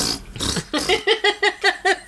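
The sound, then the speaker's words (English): A voice imitates a fart-like noise made by a shoe: a breathy, sputtering start followed by a quick rhythmic run of about seven buzzy, pulsing bursts, fairly loud, with no other sounds. “And for months, I was referred to as fart toy.”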